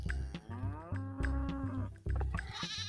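Loud, close cattle mooing: several long, droning moos follow one another and overlap, like a small herd calling, with no talking.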